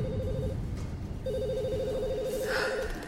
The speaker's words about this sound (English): Phones in the office were ringing off the hook.